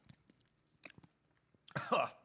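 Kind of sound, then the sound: human body sound, choking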